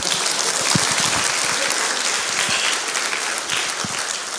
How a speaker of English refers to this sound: Clap, yeah.